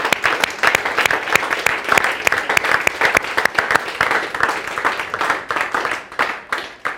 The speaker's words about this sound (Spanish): ¿Por qué no le damos una ofrenda de aplauso a nuestro Dios?